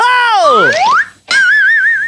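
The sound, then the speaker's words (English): A slide whistle effect played from a sound effect button, loud: the pitch swoops down then back up, breaks off briefly, then returns as a wavering, warbling high tone. No talking. “Joe Pesci for tossing that slide whistle button after hearing me, wish for one, last week.”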